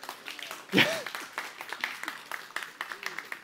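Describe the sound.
A crowd applauds, a steady patter of many hands clapping at moderate volume, with a brief louder burst of voices and whoops near the start before the clapping carries on evenly.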